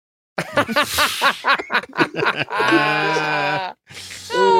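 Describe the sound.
After a burst of chuckling, a person imitates a cow with no lips mooing with an "ooh" sound, a long sustained nasal tone held for about a second, then starts another, fairly loud.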